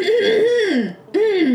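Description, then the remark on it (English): A loud throat clearing at a ticket booth, voiced like an exaggerated "ahem" in two parts with a short break between, likely a person imitating the sound deliberately rather than clearing naturally. “I clear my throat to sort of...”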